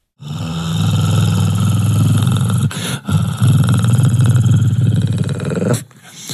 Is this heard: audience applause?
no